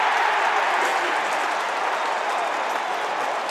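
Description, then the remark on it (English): A large stadium crowd at an Australian football match between the Blues and the Dockers roars and cheers a goal in a dense, steady wash of noise that holds at an even, loud level for several seconds, with no distinct voices standing out. “Big driving handball, top left hand point of the square, Durden gave it back to Cottrell, crowd will tell you.”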